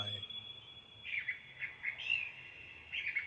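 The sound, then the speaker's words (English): A thrush sings a few short, bright warbling phrases in quick succession, clear but fairly soft against a quiet background, with no voices. “The darkling thrush is this bird that sings.”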